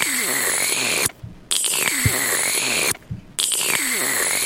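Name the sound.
slurping a drink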